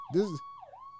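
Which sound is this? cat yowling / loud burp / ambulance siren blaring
ambulance siren blaring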